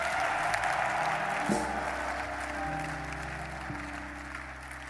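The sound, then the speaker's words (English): A large crowd claps and shouts together in a steady, continuous roar that fills the whole stretch, with a sustained low musical tone humming underneath. “Come and clap your hands and scream.”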